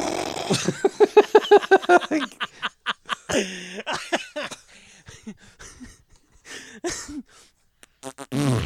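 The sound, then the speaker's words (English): A voice imitates a mustard bottle's sputtering, fart-like squirt: a rapid run of wet, buzzy pulses, then scattered squelchy bursts with snickering laughter mixed in, fairly loud. “Mustard bottle farts.”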